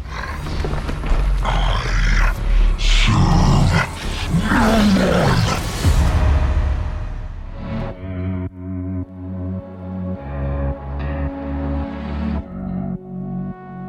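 A loud, gravelly monster roar, made from a voice recording morphed with a dog's growls and a few other sounds, sweeps and snarls, then gives way to a deeper, pulsing growl with a tonal, processed edge. No one speaks.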